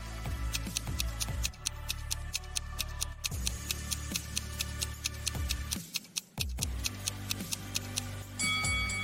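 A clock ticks steadily as a countdown timer for a 7-second brain teaser, in a fast, even rhythm of crisp, sharp clicks over a soft sustained musical drone, with a brief drop-out near the end before the ticking resumes.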